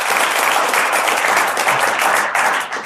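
A crowd breaks into steady, enthusiastic applause, dense overlapping claps filling the space at a constant loud level for a few seconds before easing slightly at the end.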